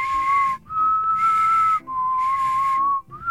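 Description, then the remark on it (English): A person whistles a sustained, steady high note with the tongue, as high as they can reach, held in three long stretches separated by brief breath gaps, fairly loud with no talking. “It's as high as I can get. That's a tongue whistle.”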